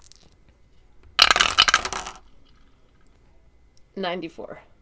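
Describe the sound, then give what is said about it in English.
A burst of hard clattering as dice tumble down a dice tower for a disguise roll, rattling for about a second, followed after a pause by a brief voice speaking. “give me a disguise roll. It'll be vocal disguise. I know we did acting last time. Chad did pass, but I like this idea of disguise as it. Come on, sweet Dice Tower.”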